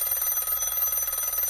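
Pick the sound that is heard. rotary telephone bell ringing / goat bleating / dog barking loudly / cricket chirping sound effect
rotary telephone bell ringing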